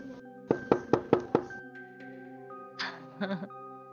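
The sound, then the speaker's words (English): Five loud, heavy knocks from large fists pound on the front door of a house in quick, even succession, echoing through the house, over a low sustained musical drone, followed by a short muffled scuffling sound. “The knock is much louder than what was just created as it echoes through the house, large fists slamming on the door.”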